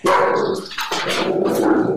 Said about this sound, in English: And there go the dogs.